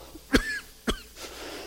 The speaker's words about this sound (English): I can't even say it without coughing.